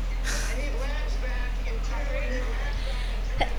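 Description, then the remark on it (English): A single sharp, loud sneeze bursts out near the end, after a stretch of faint murmuring voices over a steady low background hum. “Bless you.”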